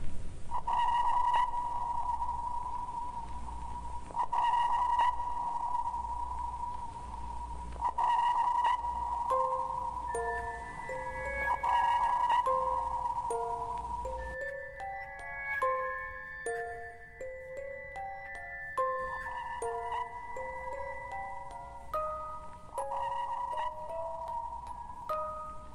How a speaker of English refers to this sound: Now we hear the complete sequence of transmit pulse, reverberation, and 1 second later, the echo from a submarine.